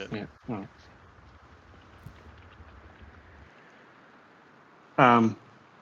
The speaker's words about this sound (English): Yeah, because it sounds like we're in fog, because you've got the fog horn.